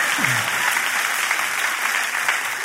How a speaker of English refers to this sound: Oh, the applause died down by 73%.